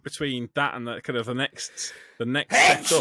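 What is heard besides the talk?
sneeze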